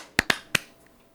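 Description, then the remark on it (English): Three sharp hand claps made for audio sync after a countdown, landing in quick, uneven succession, the first two close together and the third a beat later. Each is a crisp, bright snap, followed by near silence. “Clap sync. 3, 2, 1.”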